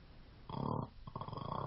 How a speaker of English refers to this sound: Why that nigga snoring? No, that's my water bottle. It has air bubbles trapped in it. Oh, Scar was snoring.